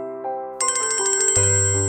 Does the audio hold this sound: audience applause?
no